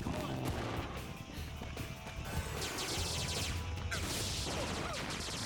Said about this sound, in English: Some of those blasts are hitting the ground but aren't causing explosions. It caused a lot of rock slide with just a couple rocks getting knocked down.